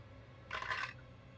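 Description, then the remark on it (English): A brief clatter of dice rolling across a hard tabletop and landing on a 6, lasting about half a second, with a soft low hum behind it and no one talking. “That is a 6 on the dice with a +1 to charm.”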